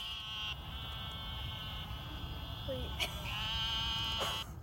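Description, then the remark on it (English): A chorus of frogs gives long, wavering bleats much like sheep or lambs, calls overlapping steadily and fairly loud over a low background rumble, with a couple of brief sharp clicks. “apparently these are definitely frogs, but they sound like sheep”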